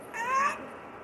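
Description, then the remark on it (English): A kitten, not yet two months old, growls once in a short, thin, whiny burst lasting about half a second, rising slightly in pitch before trailing off into quiet background hiss, with no one talking. “And in other words, she's not even 2 months, ow, 2 months old yet. And she's, this is what she does. Ow, ow, ow. And she's growling.”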